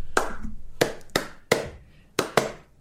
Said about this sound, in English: Do you like white people that clap out of time? Then this movie is for you.